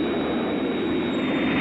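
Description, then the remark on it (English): A steady, loud drone of aircraft engines during an aerial chase, as Scott Tracy of International Rescue is shot at by three unidentified aircraft, a dense rumbling wash that holds constant throughout with no voices. “He's being shot at by some naughty people in some naughty planes.”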